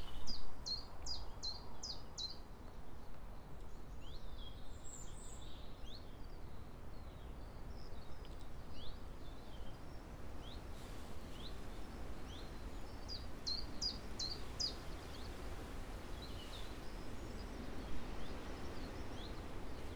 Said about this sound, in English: The date today is Monday, 10th of May, 2021. And I have the lovely sound of a chiff-chaff to start the day.